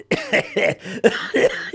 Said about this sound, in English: He's making me laugh so I'm coughing.